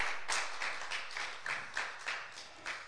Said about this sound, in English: clap of praise tonight.